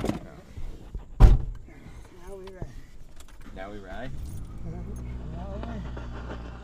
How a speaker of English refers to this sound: We get in the truck.